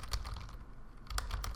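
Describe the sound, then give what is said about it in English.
Rapid clicking of keys on a computer keyboard as someone types in a chat, a quick burst of taps, a brief lull, then another flurry, fairly quiet with no voices. “I'm typing in chat really quick.”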